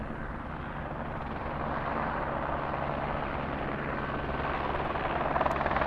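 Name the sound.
helicopter flying overhead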